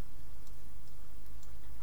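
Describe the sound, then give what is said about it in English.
Steady ticking of a clock tower, soft and evenly spaced, over a constant low rumbling hum with no voices. “How about a mysterious clock tower?”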